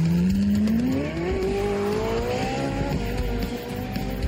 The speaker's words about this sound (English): Ooh, this car is remarkable handling.